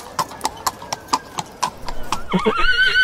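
Steady hooves clip-clop in an even rhythm, about eight crisp strikes, then a horse lets out a loud, wavering neigh near the end, clear.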